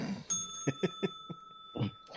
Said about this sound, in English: ring the bell.